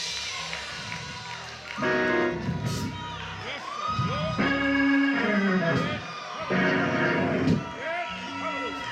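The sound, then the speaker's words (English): An audience shouts and cheers in praise, loud overlapping voices rising in excited bursts and whoops that carry on throughout, energetic. “Some of y'all shouting for your sons and daughters and don't even know it.”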